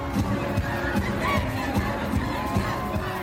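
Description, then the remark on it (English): A large, packed crowd at a concert by an American band in the Black Sea resort city of Batumi, Georgia, roars and shouts continuously. Steady, rhythmic thumps pulse underneath, like clapping or a beat. “In Georgia's resort city of Batumi, on the Black Sea, a packed crowd at a recent concert is watching ….”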